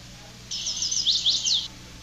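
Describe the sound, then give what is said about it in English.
A single bird, recorded at night in Maine, sings a rapid, high-pitched warbling phrase lasting just over a second, clear against a quiet outdoor background with faint low hum. “I recorded this bird last night.”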